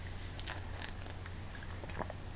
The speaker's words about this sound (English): Hang on, I gotta take a sip here.